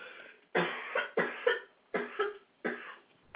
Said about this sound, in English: Sorry about that, guys. I hope I can handle the show without too much more coughing.